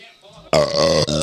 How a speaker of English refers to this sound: Yeah. I feel better. I had a couple good burps. It's the enchiladas. They really are doing me in.